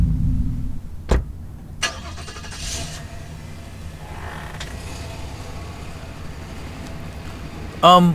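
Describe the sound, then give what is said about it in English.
An old Datsun car engine rumbles steadily, low and throaty throughout, punctuated by a few sharp clicks and metallic creaks, with a brief louder burst near the end. “You don't know anyone who drives an old... What was that, a Datsun?”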